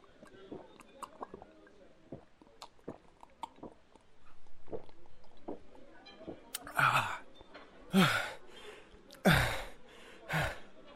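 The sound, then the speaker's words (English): At a bar, a man gulps water in quick, wet swallows for several seconds, then lets out three loud, breathy gasps for air, each one sharp, with no talking. “I'm okay. I was really thirsty.”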